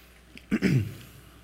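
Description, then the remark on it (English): A single brief swallowing sound of a speaker taking a quick sip of water and gulping it down during a Bible talk, with a soft throaty noise over a quiet background and no talking. “And I'm also going to, while you guys find that, I'm going to get another sip of water.”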